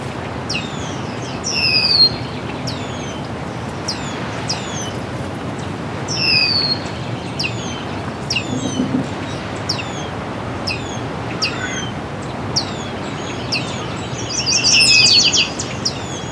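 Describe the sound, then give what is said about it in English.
Red-winged blackbirds mobbing a red-tailed hawk right above the recordist: a steady series of sharp, down-slurred alarm calls repeating every second or so, over a soft outdoor hiss with no talking. “Red-tailed hawk's right above me now. It's being attacked by red-winged blackbirds.”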